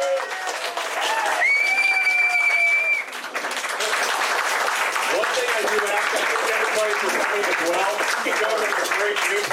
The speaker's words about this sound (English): All right. Let's give everybody a huge round of applause.